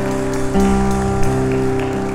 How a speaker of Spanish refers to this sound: Vamos, dile que está a tu lado, ese aplauso es para ti, ese aplauso es para ti, es para ti, es para ti.